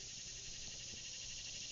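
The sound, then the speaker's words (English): A cicada buzzes right next to the listener, its abdomen vibrating, in a steady, unbroken high-pitched buzz that holds at an even loudness from start to finish, with no voices present. “A cicada just flew up right next to me. I don't know if you can hear how loud he is, but he has come to add his wild and imperfect chorus to our conversation.”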